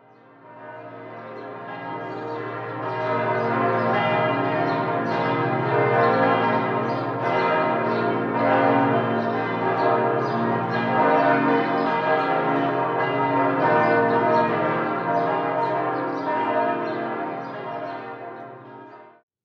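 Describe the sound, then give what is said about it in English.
The Sunday bells of St. Joseph's church peal continuously at a steady, fairly loud level, their overlapping tones striking in a rapid, rolling rhythm that fades in and tapers off at the end, with no voices. “Sunday Bells, St. Joseph's.”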